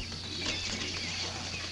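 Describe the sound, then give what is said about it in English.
A bird flutters and flaps its wings inside a cage as a person plays with it, making a steady, soft rustling patter over a low background hum, with no voices. “Okay, so our other professor's playing with the bird.”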